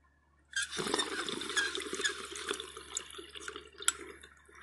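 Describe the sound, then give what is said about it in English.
Steady gurgling of water bubbling through a dab rig as someone inhales, starting abruptly after a moment of quiet and churning continuously for about four seconds with small irregular pops. “Some butter cookies, about to dab it up.”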